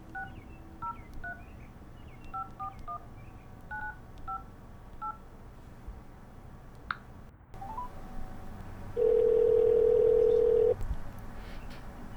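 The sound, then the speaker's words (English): A house phone being dialed: a quick run of about a dozen two-tone keypad beeps, a click on the line, then a steady, louder ringing tone. No one speaks. “All right, I'll just try the house phone, I guess.”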